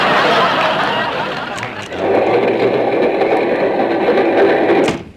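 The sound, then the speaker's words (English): A steam train engine rumbles and chugs steadily, a dense mechanical clatter that shifts in tone partway through, with a couple of brief sharp bursts and no clear whistle. “Do you hear that whistle down the line? I reckon that it's engine number 99.”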